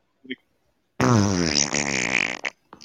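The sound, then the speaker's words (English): A long, loud, buzzy fart stretches over a second with a wavering, rumbling pitch, preceded by a faint short blip and trailing off in a couple of brief sputters. “It sounded like his pants blew out.”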